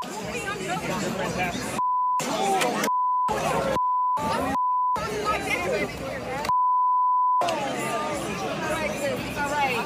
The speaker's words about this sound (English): They beeped out every word. Imagine what she was saying.